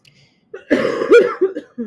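A loud coughing fit: a harsh burst of coughs followed by several shorter, raspy hacks in quick succession, ending with one last cough.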